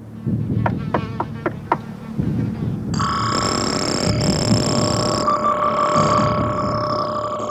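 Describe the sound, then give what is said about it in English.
A robotic scanning sound effect from a movie, the T-800 scanning through all the different things it should say before picking one: a quick run of sharp mechanical clicks over a low rumble, then a sustained electronic buzzing whine with steady high tones and faint sweeping chirps. “You can hear it scanning through the as the T-800 goes through all the different things it should say, and then it picks it.”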